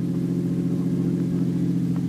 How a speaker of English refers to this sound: Don't drive so fast, Brother Harry. We don't want to attract the police.